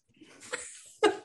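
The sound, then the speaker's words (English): A person imitates a cat purring: about a second of breathy, raspy hissing, then a short, louder voiced rumble at the end. No words are spoken. “Hello, I'm purring at you.”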